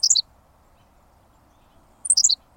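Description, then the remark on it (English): A Henslow's sparrow gives its tiny song twice, a very short, high, hiccuping chirp each time, about two seconds apart, over a quiet background hiss. “Amazingly, a Henslow's sparrow values brevity even more. That was it. In case you missed it, here it is again.”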